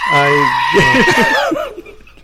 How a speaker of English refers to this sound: Good old goats. Screaming goats.